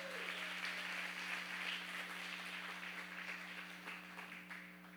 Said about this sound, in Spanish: Pero usted hoy, como es tan pilo y viene a la reunión del sábado a las 7, que es la mejor reunión, eso, déselo fuerte al Señor, dele fuerte ese aplauso.